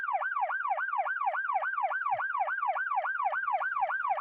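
An emergency siren wails in a fast, rapidly rising and falling yelp, steady and loud throughout, with no voices over it.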